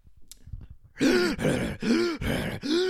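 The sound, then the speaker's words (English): A person imitates a dog's obstructed, snorting breathing, the sound of a dog's airway collapsing in turbulent airflow as it breathes in: four loud, rhythmic rasping snorts with a groaning, throaty tone, following a second of faint low rumbling. “what's happening is as the dogs are breathing in, their airways are reverberating in that turbulent airflow and collapsing in on itself.”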